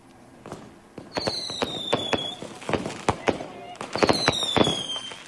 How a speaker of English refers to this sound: Fireworks in the night sky over the English city of Southampton. It was to celebrate Diwali, the Hindu festival that symbolises the power of light over darkness.